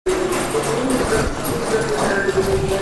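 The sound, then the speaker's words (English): Busy ambience at Kyiv Pasazhyrskyi train station, Ukraine, on February 14, 2023: a steady, fairly loud rumble of rail noise with a sustained mechanical hum and faint background murmur, continuous throughout. “February 14th, 2023. Kyiv Pazersky train station.”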